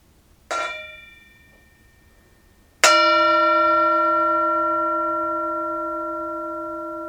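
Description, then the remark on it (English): A Tibetan singing bowl, used as a mindfulness bell, is struck twice: first a light tap that fades quickly, then a firmer strike that rings out with a rich, sustained shimmering tone, slowly decaying with no voices. “We also have the Tibetan singing bowl, the mindfulness bell, and it is an invitation to enjoy this moment, to enjoy the sound of the bell in this present moment.”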